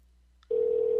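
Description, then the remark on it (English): A soft click, then a steady telephone ringing tone on an outgoing call switches on and holds loud and unbroken to the end, with no voices present. “I hear it ringing.”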